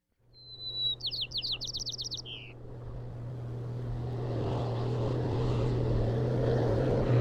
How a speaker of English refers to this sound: May 5th. They're cutting the hay next door.